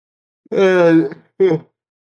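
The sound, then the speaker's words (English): A loud, drawn-out vocal yawn in the middle of a sentence, with a steady, slightly falling tone lasting over half a second, then a brief, shorter voiced exhale trailing after it. “Sorry, didn't mean to yawn right in the middle of a sentence.”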